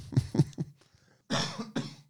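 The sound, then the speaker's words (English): A fairly loud run of coughs, a lingering cough left from having had COVID: three quick hacking bursts, a short pause, then two heavier, rougher coughs, with no talking. “I got COVID cough.”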